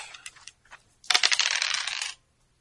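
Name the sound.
dice being rolled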